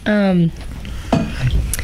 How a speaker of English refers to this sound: Sip of tea. More medicinal tea. Special tea. Which is just honey water. There's like nothing else in it. A little bit of tea with honey.